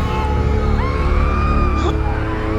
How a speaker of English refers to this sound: Some of the people did not move fast enough and began to burn alive. Their horrific screams sent chills down the spines of the Spartans, who watched countless people writhing on the ground.